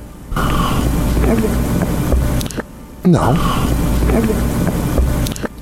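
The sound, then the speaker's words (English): Two loud, noisy gurgling slurps of sipped tea, each lasting a couple of seconds with a brief pause between them, and a short spoken word in the mix. “It's a strange gurgle, and there was another one, by the way.”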